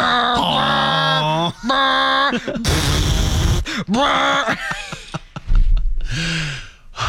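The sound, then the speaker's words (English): A voice imitates a dial-up modem: steady sung beeps, then a harsh hissing screech, followed by warbling, swooping tones and a final noisy burst, all loud with no ordinary speech. “beep, and then beep, boop, beep, boop, beep, beep, beep, beep, and then dee-doo, why did it kind of sound like a donkey always at the beginning, hey?”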